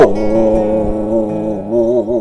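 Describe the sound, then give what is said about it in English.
A dog named Maxwell, in East Nashville, Tennessee, says goodbye with a loud, drawn-out vocalization that wavers in pitch, more a sustained howling bark than short yaps, heard alone without any talking. “here with my dog, Maxwell. Say goodbye, Maxwell.”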